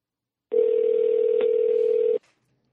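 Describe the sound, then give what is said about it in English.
A phone call cuts out during a thunderstorm in the area into a single steady electronic tone that holds for under two seconds, loud, then stops abruptly with a faint click. Nobody speaks. “Hello, did I lose you?”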